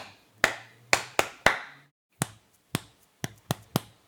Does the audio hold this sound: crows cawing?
no